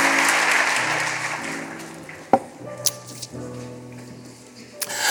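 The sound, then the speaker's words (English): A church audience applauds, giving the Lord a hand clap of praise, a dense wash of many hands clapping that fades into scattered claps, with a few sharp louder claps standing out and organ chords sustaining underneath. “Come put your hands together and give the Lord a hand clap of praise.”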